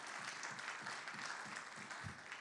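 A crowd claps continuously, a dense wash of many hands applauding together at steady volume, with no voices rising above it.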